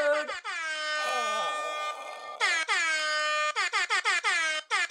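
An air horn blares in a rapid series of blasts: a few short honks, a long sustained blare, then a string of quick staccato bursts, loud and brassy with a rich stack of harmonics.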